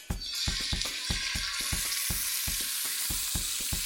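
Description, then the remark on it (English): Meat sizzles loudly skin-side down in a hot, salted pan, a steady hiss with a quick, regular series of soft thumping pops running underneath from start to finish. “put them skin Got side it. Down so that the skin hits the hot pan where the salt is.”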